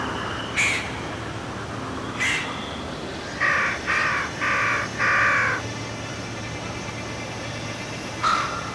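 Harsh, crow-like calls of strange birds wheeling over a rolling forest of broad-leaved trees ring out over a steady background hiss: a few single caws spaced apart, then a quick run of four grating calls in a row.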